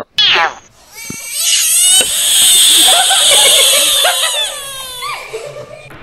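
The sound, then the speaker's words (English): A frog lets out a loud, drawn-out, shrill scream-like distress cry lasting several seconds, preceded by a couple of short squeals and no talking over it. “I did not know frogs made these types of fucking noises.”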